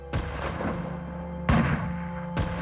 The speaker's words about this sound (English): Gunshots split the sea salt-tinged air of the Fondo Riella.